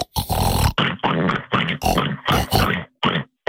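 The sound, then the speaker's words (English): A person imitates a pig, making a rapid series of about eight loud, nasal oinks and snorting grunts in quick, uneven bursts with brief gaps between them. “Oink for me, you dirty little pig.”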